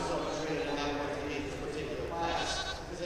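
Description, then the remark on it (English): A sheep bleats at a livestock show, its wavering, nasal calls stretching across a few seconds over a steady backdrop of outdoor farm noise and indistinct voices. “I think it's fun having like sheep, because once you get to train him, he's not so crazy.”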